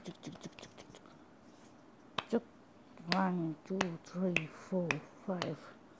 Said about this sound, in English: Welcome her with a warm clap.